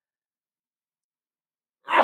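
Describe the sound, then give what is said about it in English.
After nearly two seconds of silence, a single sudden sneeze bursts out, loud, breathy and harsh, cut off abruptly at the end. “I'm about to sneeze.”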